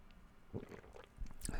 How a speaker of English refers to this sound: Pardon me while I take a sip of my coffee.